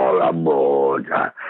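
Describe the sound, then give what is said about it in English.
A dog howls as if singing, in a long, wavering, tuneful tone that slides upward in pitch near the end, then breaks into a couple of shorter yowls. “He wants to sing to Dog Dar.”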